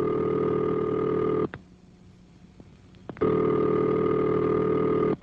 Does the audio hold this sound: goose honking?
no